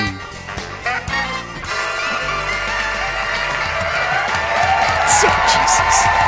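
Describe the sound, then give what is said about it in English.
A crowd at a live show claps and cheers for the host's introduction in a steady, dense wash of applause, with scattered high whoops and shouts rising over the noise and growing slightly louder toward the end. “Put the clapping in the track.”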